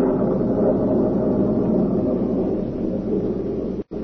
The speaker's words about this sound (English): Soon afterwards, it began to rain. Then a cloudburst hit.